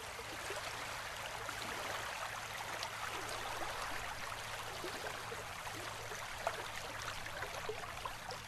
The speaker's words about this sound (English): God sends the rain. Hear it, falling gently from the clouds to water the earth, like small pebbles hitting the ground in a cadence of rhythmic wonder.